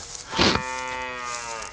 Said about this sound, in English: I've got the cow.